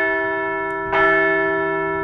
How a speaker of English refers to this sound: Let's ring that bell one more time for the Phillies as they wrap up their regular season at home.